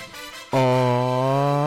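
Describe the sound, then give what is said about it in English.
After a short, quiet lead-in, the NBA on NBC basketball broadcast theme music starts abruptly with a loud, buzzy sustained note that holds one steady low pitch to the end, with no voices. “Play me some of that NBA on NBC.”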